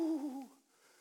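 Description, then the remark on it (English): A person voices a single soft cooing 'ooh' like a bird, moderately loud, sliding slightly downward in pitch for about half a second before fading into quiet. “the birds would come and Adam would say, hey, hey, hey, come over here, come over here. And they would come over just like that and say, ooh, ooh, ooh”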